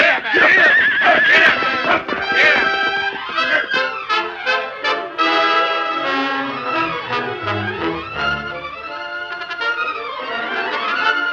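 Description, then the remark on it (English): A horse, refusing to budge and fighting a rope as men try to move it, neighs and whinnies loudly and repeatedly for about eleven seconds, its shrill, wavering calls rising and falling in agitated, nearly continuous bursts. “Let's move the horse. Get him. Get him. He's not budging. Look at him fighting the rope.”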